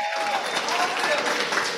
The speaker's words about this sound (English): Let's hear the clapping there. Give him a round of applause. There they go.